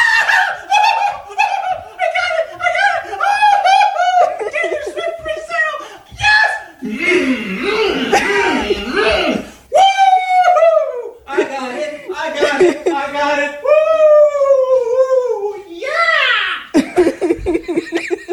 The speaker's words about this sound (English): That's his daughter laughing. Okay, it's his daughter. Okay. His daughter was laughing, but no, that screaming and yelling, that was the dad.